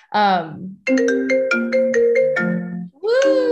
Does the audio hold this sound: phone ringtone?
yes